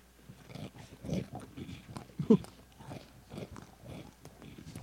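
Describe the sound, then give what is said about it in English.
Repeated crunchy bites and chewing close to the microphone, a series of crackly bursts at an uneven rhythm over several seconds, with faint background voices in between. “Well, we do crunch it into the mic.”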